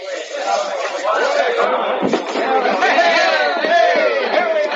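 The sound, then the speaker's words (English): A dense crowd on a dock at night chatters steadily as a ship's gangplank is lowered, many overlapping voices blending into a loud, continuous murmur with no single speaker standing out, lasting the whole stretch. “I don't want to lose you in that crowd in the dark.”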